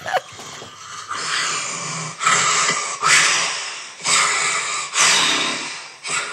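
A sleeper gasps for air after a long period of not breathing, in a series of loud, harsh, snorting breaths, about six in quick succession roughly a second apart, with no talking.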